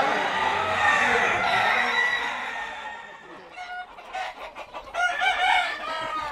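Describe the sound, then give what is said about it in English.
Fighting roosters crow and cluck, a dense, noisy chorus at first that thins into several short, separate crows and clucks, loud, with no talking. “I'm 69, going on 70, and I've been fighting roosters since I was 15.”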